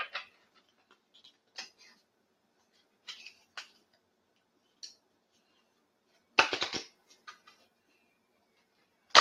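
Crisp papery clicks and flicks of cards being shuffled for a card reading, scattered at first, then a dense riffling burst near the end, with a final sharp snap. No one speaks.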